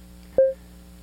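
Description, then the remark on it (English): A single short synthesizer sequencer beep, the first of four stacked 16-step sequences, a clean steady mid-pitched electronic tone that sounds loudly for a fraction of a second and then cuts off, over a faint low hum. “The first one is a beep, and then you go down.”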